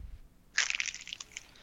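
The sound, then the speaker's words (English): Moist modeling clay is squeezed, cupped and scooped out with the fingers, a crackly, crunching squish that starts after a short quiet moment and runs steadily for about a second, moderately loud, with no voices. “So again, here we're just going to use our fingers and cup this right like so and get some of our clay out here.”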